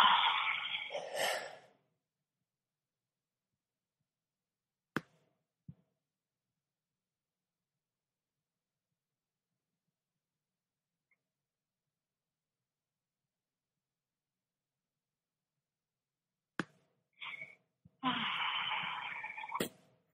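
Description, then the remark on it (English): Deep, slow breathing during a guided breathing exercise: one long airy breath at the start, a long pause of near silence with a couple of faint clicks, then another full breath at the end. “With your next inhalation, I want you to say in your mind, I am breathing in deeply.”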